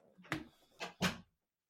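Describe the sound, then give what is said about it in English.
A door swings shut with a cluster of solid knocks: a first bump, then a heavier thud and a latch clunk in quick succession, followed by silence. “I'm just going to shut the door.”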